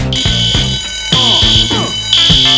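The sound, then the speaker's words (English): A loud, piercing fire alarm rings continuously in pulsing bursts during a fire drill, its shrill high tone filling the space while muffled voices and background commotion sound underneath. “All right, fire alarm, fire alarm, fire it's alarm. It's fire drill, dumbass.”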